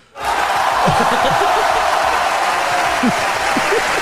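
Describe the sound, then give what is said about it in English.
A burst of applause and cheering starts abruptly and holds steady for about four seconds: dense, loud, hissy clapping from many hands, with whoops and shouts from a crowd mixed through it. “Clap for me.”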